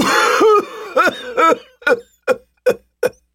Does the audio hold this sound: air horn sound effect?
no